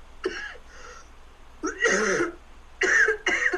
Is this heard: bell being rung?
no